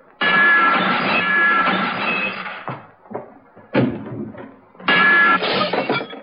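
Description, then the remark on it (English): Dishes crash to the floor in a kitchen and shatter in two long, loud bursts with a bright ceramic ring, separated by scattered clatters and clinks of falling pieces. No voices. “Then, while I was changing, I heard the dishes crashing to the floor in the kitchen.”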